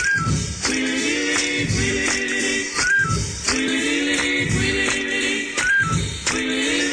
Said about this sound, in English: Is that a whistle? Did we mention what it was? Yeah, that's a whistle.